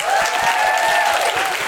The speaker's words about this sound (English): Please give a huge round of applause to Owen Jones.